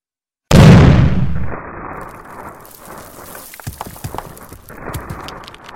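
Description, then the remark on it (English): A sudden, loud explosion bursts out with a deep booming rumble, then gives way to a long stretch of crumbling, crackling debris and scattered crashes as a building collapses. “Was it forlorn hope, or perhaps a contingency I was unaware of, that allowed me to consider that with the solid walls of stone and cement between me and the furnace, I might survive the explosion?”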